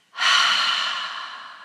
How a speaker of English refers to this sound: So release the air from the lungs and then double inhale. Tense and vibrate with energy and release.